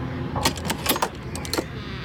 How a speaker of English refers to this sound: I heard something clank and looked up. The door latch had flipped open, and the knob was turning.